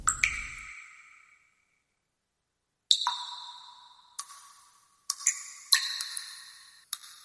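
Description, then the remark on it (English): A lighter is flicked several times to light up, each flick a sharp metallic click with a brief bright ring, coming in irregular bursts after a short pause, with no talking. “Alright, I had to just light this up because Leo's getting me all uppity.”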